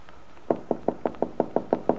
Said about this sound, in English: Now, as he comes up to Aunt Mary Lane's farm, he's encouraged by a light in the window. Walking around to the back, Bill taps lightly on the kitchen door.